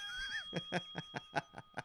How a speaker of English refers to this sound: Does the bell sound crisper? I'm just curious.